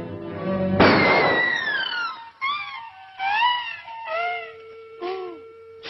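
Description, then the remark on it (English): A loud cartoon shotgun blast bursts out suddenly, followed by a string of sliding, warbling whistle tones that rise and fall in short bursts. No one speaks. “I say it's duck season, and I say fire.”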